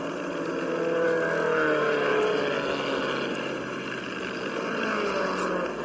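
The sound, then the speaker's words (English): Stock cars roar around a race track with left and right turns, a straightaway and a tight hairpin during a 150-mile race, their engines droning steadily and loudly with rising and falling whine over several seconds, no voices heard. “Man, look at those cars just roughing up this track.”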